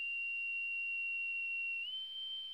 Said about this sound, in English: Well, that sounded like a whistle that needs wetting.